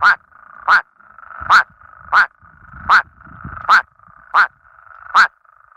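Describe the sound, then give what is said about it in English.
Male plain spadefoot toads sitting in ponds give short, nasal quacking calls, about eight in a steady series spaced under a second apart, each a brief duck-like honk standing out loudly over faint background murmur. “The male plain spadefoot toads will sit in some ponds and sing some songs. These ones actually sound like little ducks.”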